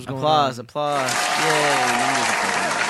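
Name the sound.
applause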